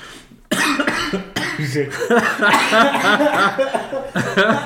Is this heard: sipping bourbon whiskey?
no